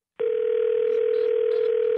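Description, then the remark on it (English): A telephone dial tone after a hang-up on a repeated QVC sales call: a single steady, mid-pitched electronic hum that starts abruptly and holds unbroken at constant loudness for about two seconds, with no voices. “I let the phone off the hook, and you still come out the phone.”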